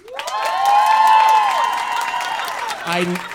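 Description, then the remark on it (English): An audience at a live show bursts into applause when asked for a round of applause, steady clapping mixed with loud cheering and whooping voices that swell over about three seconds before easing off, with a low voice breaking in at the end. “By a round of applause. There, I can hear.”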